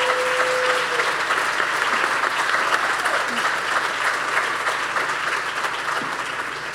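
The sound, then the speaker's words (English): Sustained audience applause, a dense crackling wash of many hands clapping at steady loudness for several seconds, easing off slightly toward the end. The applause greets panelists as they are introduced, including San Antonio Mayor Ron Nirenberg. “I'll introduce them as they're making their way up, and you can give them a round of applause as I do.”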